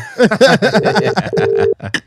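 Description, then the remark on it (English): A phone call rings out unanswered on the line, two steady ringback tone bursts in a row, while voices talk and chuckle over them. “So still ringing out? Still ringing out, bro.”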